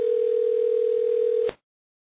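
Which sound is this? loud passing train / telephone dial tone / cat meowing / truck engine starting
telephone dial tone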